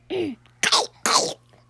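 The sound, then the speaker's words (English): A voice imitates a Gollum-style throaty cough: a short strained, groaning vocal sound followed by two harsh, raspy hacking bursts in quick succession, fairly loud with brief pauses between. “Like, we can do how he coughs.”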